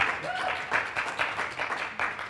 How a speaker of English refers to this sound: And I just want to say, can we just give these guys at the back a big hand of applause and just thank them for what they're doing?